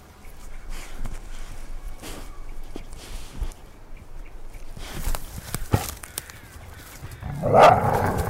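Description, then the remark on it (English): A dog, Arrow, moves around, paws and rustling faintly audible, then gives a loud bark or two near the end over a low background rumble. “Good dog.”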